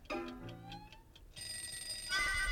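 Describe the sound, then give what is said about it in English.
A cartoon bomb in a Disney Donald Duck cartoon ticks in quick, regular beats over a musical tone, then gives way to a loud, sustained ringing buzz that grows brighter and louder toward the end. “And it's a bomb.”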